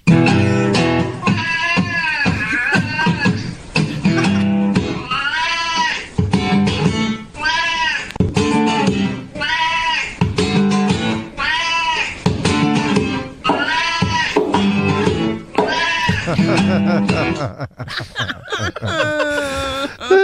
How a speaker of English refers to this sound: Have you ever hear a cat who has the blues, Carson? I don't believe I have. Well, let me introduce you to one.